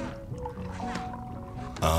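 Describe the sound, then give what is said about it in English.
Champagne poured from a bottle on the moon, a steady burbling stream with a faint ringing tone running through it, then a sudden louder rush of noise in the final moments. “But then you do something as simple as pour a drink, and your mind is blown all over again.”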